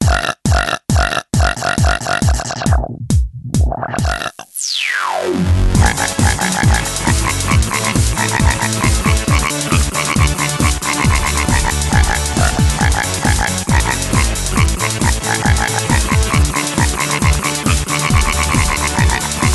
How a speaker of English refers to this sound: put the loud burp in here and like remix it into like a summer EDM jam, please.